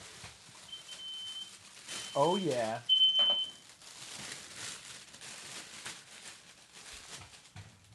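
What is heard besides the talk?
smoke alarm beeping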